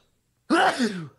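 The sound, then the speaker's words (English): A single loud sneeze bursts out of silence, a sharp explosive onset trailing into a short voiced tail that fades within about half a second. No talking. “God bless you. Yeah, God bless you. It's a good one.”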